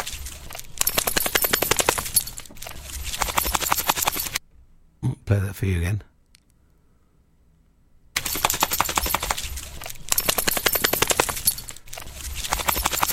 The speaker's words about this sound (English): Yeah, if you're a dog, if you've got a dog that's got wet, it's a dog shaking. Wet dog.